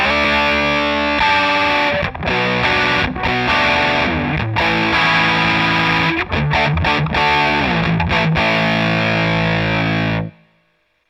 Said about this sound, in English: I don't know too many fuzz circuits that can handle that complex a chord without the general. Yeah, without that warbling.